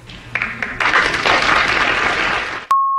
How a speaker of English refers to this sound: Audience claps and the whole nine.